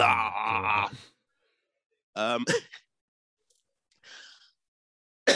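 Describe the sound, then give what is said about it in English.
A voiced, strained vocal sound, then a quick pair of short, rough coughs, followed by a soft breathy exhale after a pause. “I got a little cough there.”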